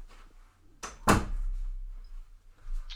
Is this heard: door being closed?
yes